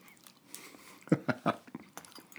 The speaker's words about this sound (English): Come join me and my guest as we drink booze and eat breakfast every Sunday. You get to even hear us chew.